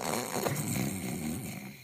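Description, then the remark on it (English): A boy pretending to be asleep imitates snoring with one long, drawn-out rumbling breath, steady, with no other talk around it. “I remember my brother even trying to snore.”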